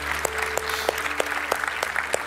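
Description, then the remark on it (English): A crowd gives God a round of applause after a prayer, a dense, steady wash of clapping, with sharper claps landing at a regular beat roughly three times per second. No one speaks. “Come on, let's give God a round of applause, can we?”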